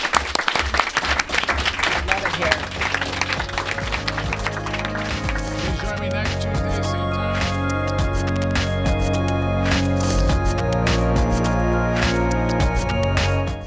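A room full of people bursts into dense, steady clapping that fills the first few seconds, then music swells in and carries on while the applause fades beneath it.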